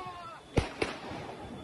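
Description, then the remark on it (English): Two sharp gunshot-like bangs about a quarter second apart, sounding muffled, over a low background murmur of voices and ambient noise, from a recorded video of a shooting at a street corner. “They sound like gunshots right there.”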